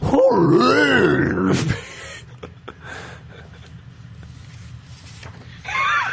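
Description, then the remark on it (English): A voice imitates the call of a gigantic 11-foot owlbear, a loud, warbling, rising-and-falling growling bellow for under two seconds, then quiet rustling, and a brief second growl bursting in at the end. “Hey, sounds an owlbear call.”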